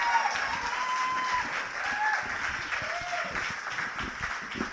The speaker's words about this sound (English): That was her first time up. Give her a big hand.